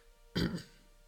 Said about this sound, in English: Apologize, I have to clear my throat a couple times here.